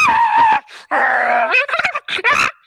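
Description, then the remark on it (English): A voice makes a sound effect of a squirrel ninja running around while being chased by a tiger that can fly: a loud, nasal whining cry that slides up and down in pitch, followed by a rapid string of short, choppy squeaks and bursts. “So I need a sound effect for a squirrel ninja who is running around being chased by a tiger that can fly.”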